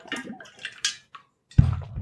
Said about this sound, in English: Shoot, have a drink of my water here. Hold on.